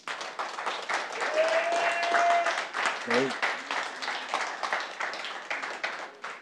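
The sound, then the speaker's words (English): Audience applause at a church service for two children about to be baptized: a dense, steady patter of many hands clapping for several seconds, with a short whistle and a few scattered voices mixed into the crowd noise. “Can we clap for these two?”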